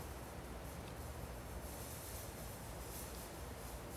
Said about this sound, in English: Hear the ebbing and flowing of the air conditioner as it struggles to keep us cool.